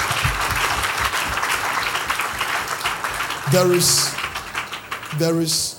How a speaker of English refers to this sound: Clap your hands and appreciate God.